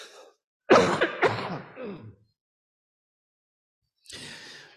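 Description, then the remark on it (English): A loud burst of coughing and throat clearing from a lingering post-viral cough, a few rough hacks in quick succession, then a pause and a softer, breathy rasp at the end. No speech. “I have a lingering post-viral cough, but I'm going to live, and I beg your indulgence.”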